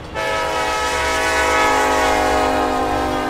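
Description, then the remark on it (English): A loud train whistle sounds in one long, steady blast, rich and brassy, holding for over three seconds, with no voices present, from a train passing through the small town of Bremen, Georgia, USA. “That train whistle is something you can't miss during a visit to Bremen.”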